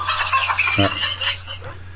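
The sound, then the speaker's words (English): A chicken clucking sound effect played to mark a correct answer: a burst of quick, scratchy clucks for about two seconds over a steady low hum. “So give a chicken clucker a ding there for...”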